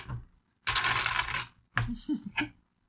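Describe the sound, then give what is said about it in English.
A loud rattle of dice shaken together for about a second, followed by a few sharp clacks as they tumble and settle onto a hard surface. “Quick, touch all our dice.”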